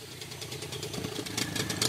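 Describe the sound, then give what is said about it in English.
A small outboard motor on the back of a long, skinny dugout canoe idles steadily on a river in the Amazon, a low chugging drone with a faint knocking texture and a slight rise in loudness toward the end, with no voices. “Two guys are waiting for us in a long, skinny dugout with an outboard on the back.”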